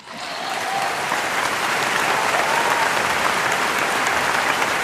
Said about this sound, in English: That is a crowd of people applauding you. It is my new soundboard that entered the podcast on the last episode that got released.